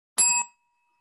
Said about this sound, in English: All right. Must be right if we both hit the bell.